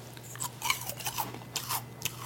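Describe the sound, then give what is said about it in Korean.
Someone chews a crunchy low-calorie handmade meringue cookie from Juni Cookie, with a run of sharp, crackly bites over about two seconds, the crunches coming in uneven bursts with no talking. “이게 이제 저칼로리 그 간식은 맛이 없잖아요.”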